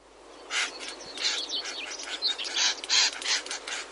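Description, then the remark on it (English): Reed warblers give loud, harsh, chattering calls, mixed with sharp clicking beak snaps in a rapid, uneven series over a faint background hiss, as they gang up to scare cuckoos away. “Well, what they do is they make very loud calls and they snap their beaks with a loud clicking sound.”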